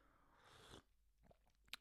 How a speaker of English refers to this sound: For you, those of you who are solely listening to the podcast, that was me taking the first sip of this coffee for the coffee of today.